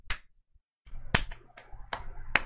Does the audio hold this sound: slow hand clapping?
yes